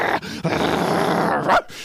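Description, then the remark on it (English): A person imitates a pack of dogs growling, a low, sustained rumbling snarl lasting under two seconds, fairly loud, rising into a brief harsher burst near the end. “Then we go downstairs like a pack of dogs.”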